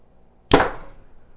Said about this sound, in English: But I feel like this arrow is reaching the target before the string reaches the string stop. It's awesome. Here goes my fourth arrow out of the carbon icon. Ready. Push, pull, squeeze.